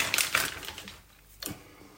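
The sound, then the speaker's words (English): Cheese being grated onto bread topped with about three slices of ham for a ham grilled cheese: a quick series of rough, raspy scraping strokes, then a pause and one more short scrape. No one speaks. “And then we're going to grate some cheese onto the top, basically.”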